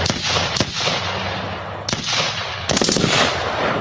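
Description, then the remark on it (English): A burst of loud gunfire sound effect: several sharp shots ring out, the last few in quick succession, over a dense, noisy background with no talking. “I got some gunshots.”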